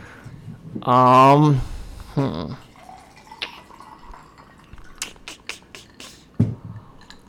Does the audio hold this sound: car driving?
no